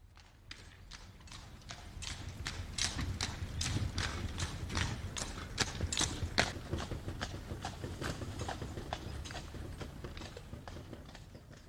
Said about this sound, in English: The extended family Ames clan and guest rode from Five Corners to town on the hay wagon, pulled by Nathan's two horses.